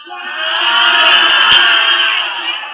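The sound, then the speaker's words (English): A room full of people from sociology applauding, a dense, steady patter of many hands clapping together that holds at a fairly loud level for a few seconds, with a few sharper individual claps standing out. “Do you know those who are clapping, the sociology people? They don't understand what is going on.”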